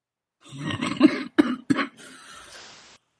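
Harsh, heavy coughing: a long rough wet cough followed by two sharp separate barks, then a raspy wheezing breath trailing off. No talking, fairly loud.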